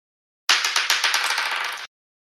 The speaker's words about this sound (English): I rolled a 9.